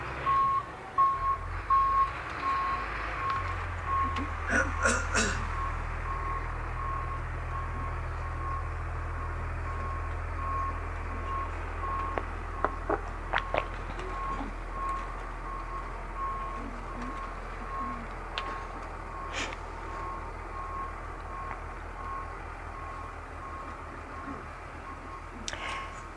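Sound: truck reversing beeps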